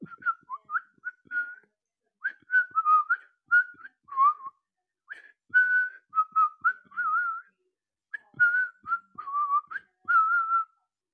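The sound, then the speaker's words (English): A person whistles a lilting, birdlike tune, imitating the song of a golden bird with quick chirpy phrases and warbling high notes, delivered in three bursts separated by short pauses, with no talking. “And then there's this great golden bird sort of in the middle, and it's just tweeting out a little song.”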